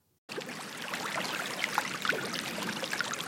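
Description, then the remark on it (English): Water flows and trickles steadily over stones, a continuous babbling with small bright splashes, starting abruptly and holding an even level throughout. “Water.”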